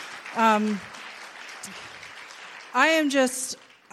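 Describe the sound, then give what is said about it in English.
A crowd claps steadily throughout for a pastoral couple, a dense spread of hand claps, while loud whoops and cheers rise above it in two bursts near the start and toward the end. “So can we just give an applause for them?”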